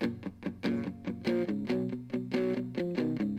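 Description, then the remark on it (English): A short stretch of rock music with a gritty, distorted guitar tone driving steady chords over a punchy, regular beat, loud, with no voices. “I would be okay if his distortion was like this.”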